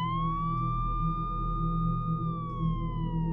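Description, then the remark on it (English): Police car sirens wail as cop cars rush in about two blocks from a house on a nice April afternoon: one long, sustained tone that rises slightly and then slowly falls, with bright harmonics over a steady low rumble of traffic or engine noise. “It was a nice day, and about two blocks from our house, the cop cars came rushing in.”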